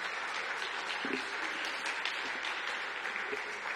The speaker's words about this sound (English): So don't clap for me when I get off. Just please clap for them, please, because they are great. They are really, really great. They are really great.